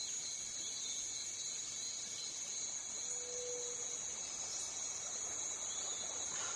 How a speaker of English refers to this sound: What a beautiful river.